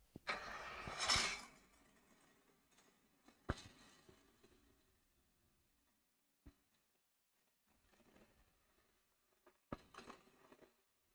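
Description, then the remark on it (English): A 1960s Triumph twin-cylinder motorcycle engine cranks and fires into a loud, rough burst, then settles into a low idle punctuated by sharp throttle blips and short pops through an aftermarket, non-original exhaust. “It's old. Yes, but it's not on original exhaust. Okay, so it's a twin. It is a twin.”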